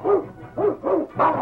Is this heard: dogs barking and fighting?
yes